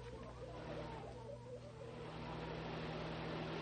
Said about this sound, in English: Hey, here comes a car. It looks like Jim Brownlee.